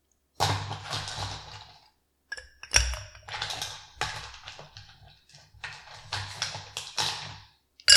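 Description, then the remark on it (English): Ice cubes clatter into a highball glass in several quick bursts as the first step of making a bourbon cocktail, bright, hard clinks and rattles separated by short pauses, with no talking. “Let's start by adding ice to your highball first, and then we'll sit that aside.”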